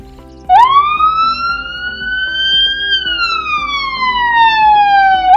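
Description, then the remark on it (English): A loud ambulance siren wails, rising slowly in pitch for a couple of seconds and then gliding back down in one long sweep, with no talking over it. “Let's get in the ambulance.”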